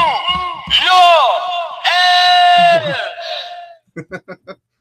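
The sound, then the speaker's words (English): A voice imitates gym effort noises: loud, strained yells and a long sustained bellow, followed by four short, sharp grunts in a quick rhythm. “I thought I could do my own gym sounds.”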